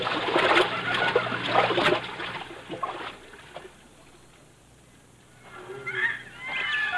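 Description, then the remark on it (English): People slosh and splash while wading across a river, a busy stretch of wading in the first few seconds that fades to quiet, with faint bird calls near the end. “We can cross the river here, Wana. It will not come above our hips.”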